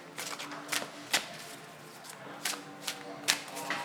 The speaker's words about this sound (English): So, there's this a bit of a problem with this shuffling, because there's no randomization of the upwards and downwards of the cards, as in the reverse orientation.